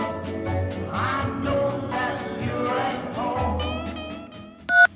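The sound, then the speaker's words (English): A steady musical bed plays, then a single short, loud electronic telephone tone sounds sharply right at the end, like a phone line beeping as voicemail is accessed. “Answer your phone, girl. Answer your phone. Pick up the receiver.”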